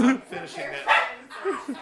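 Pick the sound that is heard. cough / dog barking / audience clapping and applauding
dog barking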